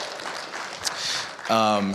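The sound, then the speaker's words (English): A church audience claps in a steady, diffuse burst of applause for over a second, celebrating progress on the church building fund, then a voice starts speaking over the fading clapping. “Thank you for, you can clap for that.”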